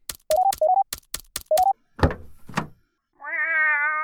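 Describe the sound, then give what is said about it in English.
About eight quick electronic keypad beeps from a smart safe being opened, some with short rising tones, followed by two solid mechanical clunks and then a long, clear meow from Kitty, the cat that had been inside the safe. “I'll open the safe and let Kitty out.”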